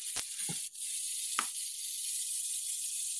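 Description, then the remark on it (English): A steady, high electric sizzle from an electronic arc lighter (USB or Tesla lighter) with a glowing coil runs throughout, broken by a few sharp crackling snaps in the first second and a half, with no one speaking. “Electronic lighters, also called USB lighters, Tesla lighters, arc lighters.”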